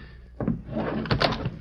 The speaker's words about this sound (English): I fell right in. Must have been leaning on the door.